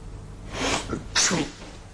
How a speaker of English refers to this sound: Okay, flunk, you sneezed.